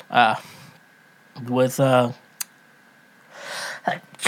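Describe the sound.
A fairly loud sneeze: short voiced, breathy build-ups and then a sharp, hissing burst of air, with a small click in between and quiet pauses around it.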